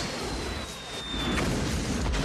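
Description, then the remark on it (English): In a movie trailer, a thin, high whistle slides slightly downward before a grenade explosion bursts in, leaving a dense, loud rumbling roar that fills the rest of the moment. No voices are heard. “Drop the pin, throw the grenade.”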